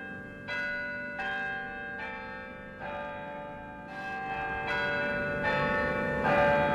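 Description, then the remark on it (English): The large historic tower bells of Albany City Hall ring in a slow, steady sequence of about eight resonant strikes, each tone lingering and overlapping the next, clear with no voices. “The historic bells of Albany City Hall return us to Albany Street, a public affairs presentation of Albany Broadcasting.”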